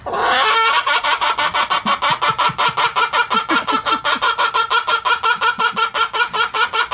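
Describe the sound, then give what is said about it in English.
A chicken on a farm in North Carolina, told a joke, clucks in a rapid, steady stream of short, repeated bursts, fairly loud, sounding like cackling laughter that carries on without pause. “He has a chicken that can laugh.”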